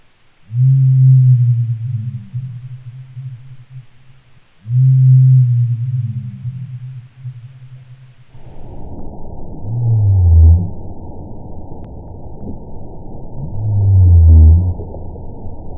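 Two deep, drawn-out hoots of a slowed-down owl call, followed by a blue whale's two long, low moans rising out of a muffled, hissing underwater background. No talking.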